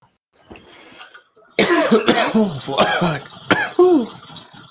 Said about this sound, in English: Oh, I just realized I haven't been coughing as bad in this episode.